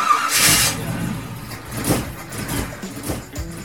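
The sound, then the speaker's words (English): An old car engine cranks and catches, then revs unevenly in a few rough surges, fairly loud with a sputtering, grumbling low rumble between the bursts. “Hey, it sounds like it's time to swap out that old engine for something better,”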